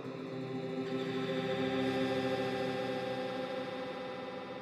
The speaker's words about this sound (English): But now I was drowning in an ocean of reverb.